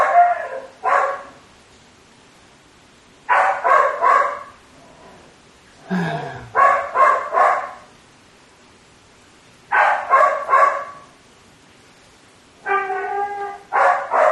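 A dog barks loudly in short clusters of two or three sharp barks, separated by brief pauses, with one lower, whining yelp partway through. No one speaks.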